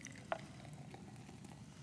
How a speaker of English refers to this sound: Now, we're going to put Coke where it belongs, inside the Coke glass.